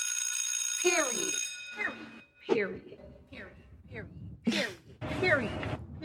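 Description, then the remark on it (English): A school late bell rings with a steady, bright electronic tone at the start, trailing off after about a second and a half as voices begin talking over it. “You need the bell again? You got a late bell?”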